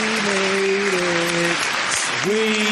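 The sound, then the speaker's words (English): Dense, steady applause from a crowd, loud and continuous throughout, with sustained voice-like tones or whoops rising above the clapping. “And I just want to clap for us, man, for making it to 100 episodes.”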